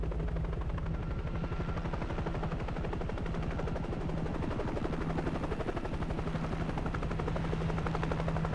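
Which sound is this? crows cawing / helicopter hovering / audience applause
helicopter hovering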